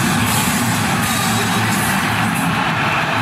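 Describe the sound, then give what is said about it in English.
A dense, steady roar of the crowd cheering at a UFC fight in Madison Square Garden, New York City, as Donald Trump arrives, loud and continuous throughout with no clear breaks, a broad wash of many voices blending together. “Listen to that crowd reaction.”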